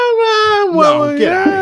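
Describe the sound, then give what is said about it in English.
A loud, drawn-out vocal yawn: a voiced, whiny tone with rich harmonics that wavers and sags slightly in pitch over about a second and a half, with no words. “So I was yawning.”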